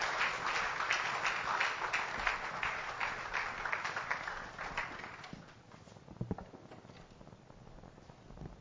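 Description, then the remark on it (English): An audience claps as a clap offering, a dense, steady roar of applause that fades after about five seconds, leaving scattered lingering claps and soft crowd noise. “With Jesus, join a clap offering.”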